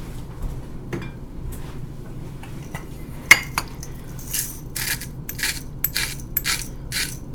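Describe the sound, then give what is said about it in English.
A spoon taps and clinks against a container a few times, then scrapes around it in a quick run of rhythmic, gritty strokes as a little more of an ingredient is stirred into a thick, already blended smoothie. No one speaks. “And because everything's already blended, I'm just going to stir it in.”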